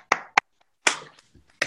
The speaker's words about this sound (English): I mean, round of applause for that.